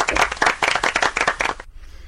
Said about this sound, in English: Round of applause.